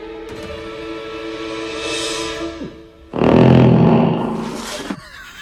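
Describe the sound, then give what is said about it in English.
A voice imitates a fart by the character Buckman aboard a silent ship with its engine off: a long, buzzy, droning raspberry lasting a couple of seconds, then after a short pause a louder, rougher sputtering blast that trails off. “Buckman farts.”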